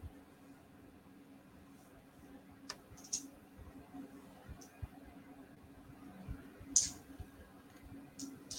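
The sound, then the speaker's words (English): Quiet, sparse clicks and light rattles of dice (a D6, a D20 and D10s) being handled and sorted, a few sharper taps standing out, over a low steady background hum with no talking. “Sorry, I'm trying to figure these bloody dice out.”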